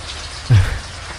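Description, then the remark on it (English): Steady hiss of heavy rain, broken midway by one loud splash of a big drop landing in a puddle, fading quickly back into the rain. No voices. “It does sound like intense rain. It's like you can hear the big drops hitting some more water.”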